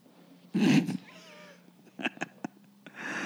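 A cat meows, a loud burst followed by a thinner drawn-out wavering cry, then a few sharp clicks and knocks before another soft noisy sound at the end.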